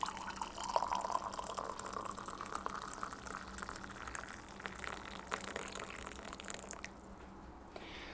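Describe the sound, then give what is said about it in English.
Liquid is poured steadily into a coffee brewer, a continuous splashing trickle lasting about seven seconds before it thins and quiets. No one speaks. “Maybe you guys can get a little sound of this when I pour it in.”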